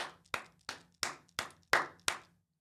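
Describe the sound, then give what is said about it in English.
Six slow, evenly spaced hand claps, each sharp and loud with a brief ringing tail, sounding like one person's measured applause with no voices. “And then if you're in the top 30%, if you're the ones that can wait, man, round of applause, bravo.”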